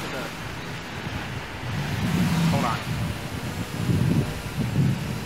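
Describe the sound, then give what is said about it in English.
Steady wind buffets the microphone with a loud, rough rumble that swells and gusts throughout, while a person speaks briefly over the noise. “It's windy.”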